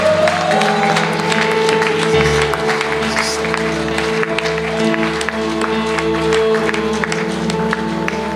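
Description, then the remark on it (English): An audience claps hands in a dense, steady patter of many overlapping claps, fairly loud, over a sustained organ-like musical tone with some murmuring voices. “If this is your prayer, I just want you to praise the Lord, give him a hand clap and say, yes, Lord, you agree.”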